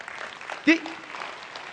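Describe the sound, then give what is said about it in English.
An audience claps in a steady, dense patter throughout, with a short, sharp vocal cry rising briefly above the applause partway through. “I take it by your clap, you're seeing what I'm saying.”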